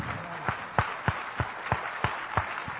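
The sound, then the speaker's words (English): A church audience applauding the moms and dads: a dense, steady wash of clapping, punctuated by regular louder claps roughly three times a second, with no voices over it. “And I tell you what, can we just give all the moms and dads a big hand?”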